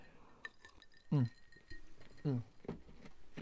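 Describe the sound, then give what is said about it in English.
An ice cube clinks against glass a few times, light taps with a faint ring, alongside a couple of short, low vocal sounds. “Got an ice cube in there.”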